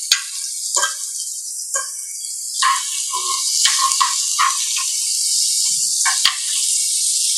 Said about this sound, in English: Okay, so I'm going to take my bowl over to the pan and we're going to pour.